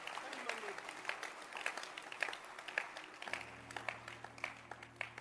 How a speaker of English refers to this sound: Clap your hands.